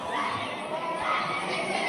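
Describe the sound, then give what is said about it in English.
A young boy who has run off from his father screams loudly and continuously, yelling for his dad, over a dense, noisy crowd, the shrill cry blending with general shouting and commotion throughout. “that's that little boy screaming like that”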